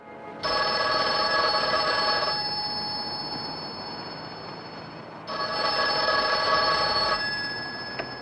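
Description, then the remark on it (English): A telephone rings twice before an answering machine message, each loud, rattling bell burst lasting about two seconds with a three-second pause between them. No voices are heard. “And it has that pleasant, like, voice telling you to leave a message, and then there's like a ding.”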